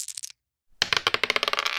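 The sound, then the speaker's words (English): A die with six games marked on it rattles briefly, then after a short pause it tumbles and clatters across a hard surface in a quick series of sharp clicks that slowly settle, fairly loud, with no voices. “So Lisa, do you want to roll that dice? Here it goes.”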